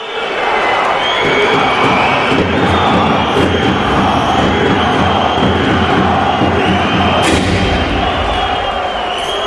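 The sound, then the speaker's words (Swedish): A dense roar of Eisbären hockey fans chanting "Dynamo" and cheering fills the whole stretch at a steady, loud level, with a sharp bang from a sound effect cutting through near the end. “Ja, men när svenska fans ropar skandal, domarskandal, hörde du vad Eisbären fansen ropade?”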